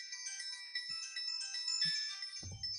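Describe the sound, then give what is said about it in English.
A mobile phone ringtone plays a bright, melodic electronic tune continuously and fairly loudly, with a few soft bumps and a low thud near the end, as if the phone is being handled. “My phone. I didn't realize my phone.”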